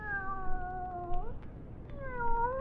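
A cat meows twice in long, drawn-out calls, the first lasting over a second and the second rising near the end, fairly clear over a low background rumble.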